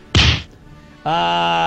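A single loud punch sound effect, a heavy smacking thwack that fades quickly, followed after a short pause by a steady, buzzing harmonic tone that holds to the end.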